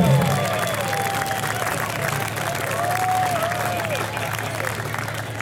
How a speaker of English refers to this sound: In fourth place, ladies and gentlemen, give a big round of applause for Ham Dunk Barbecue.